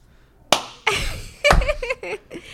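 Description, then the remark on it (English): A voice imitates a character slowly clapping his giant metal hands: three sharp, loud smacks about a second apart, with throaty clanging and ringing vocal noises filling the gaps between them. “then slowly with his like giant metal hands go like.”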